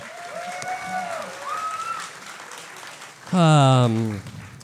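A live audience applauds with a steady patter of clapping, high whoops riding over it, and a loud sustained shout from the crowd near the end.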